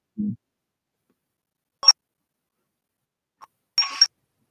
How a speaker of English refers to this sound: Can hear my fucking ringtone.